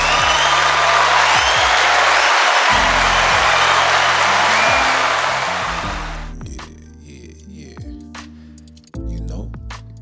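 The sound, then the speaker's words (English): A dense burst of crowd applause fills the first six seconds, loud and steady, then fades into scattered claps and a low humming tone underneath. “Round of applause, hold on.”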